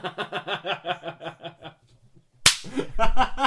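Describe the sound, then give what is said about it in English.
Rhythmic chuckling laughter fades out, then a single loud, sharp slap knocks a hat off, followed at once by a pained vocal outburst. “Ow! Knocked my hat off.”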